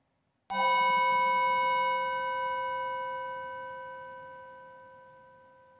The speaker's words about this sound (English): As we listen to the chime, let's remember our connection to each other and the world around us.